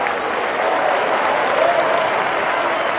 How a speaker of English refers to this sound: Let's clap our hands.